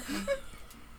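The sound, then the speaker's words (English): A person imitates the snoring of Coco, a small dog: a short, nasal wheezing snort with a squeaky pitch rise, fairly loud, then a quiet breathy trail. “Coco is doing little dog snores.”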